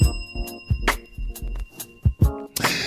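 A bell rings with a bright metallic tone, struck several times in quick, uneven succession, its clanging overtones hanging steadily underneath before a final noisy burst.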